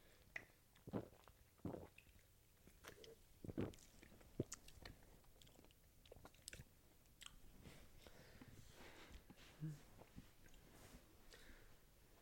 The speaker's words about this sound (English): Let me take a sip of my C4, cause this shit is dynamite.